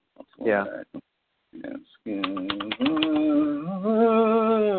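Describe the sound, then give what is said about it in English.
A quick burst of computer keyboard typing, several sharp clicks in a row, mixed in with a sustained tonal, voice-like sound that carries on after the clicks stop. “I'm still hearing every single keyboard click.”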